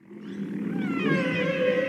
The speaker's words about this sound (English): And you mentioned her, Ellen Garland, in the South Pacific. She is studying the song of the humpback whale.